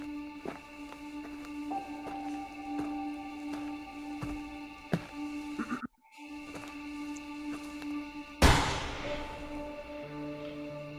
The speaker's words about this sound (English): Huh. Gunshot.